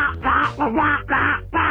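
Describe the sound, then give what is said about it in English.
A person does a Donald Duck voice, letting out four loud, raspy, quacking bursts in quick succession, with no other sound around it. “Wait, you don't like Donald Duck?”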